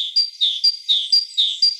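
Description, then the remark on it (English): A forest bird sings a quick, rhythmic run of high, bright chirps, alternating notes repeating about every quarter second, clear with no voices or background noise. “Once again, the forest bird.”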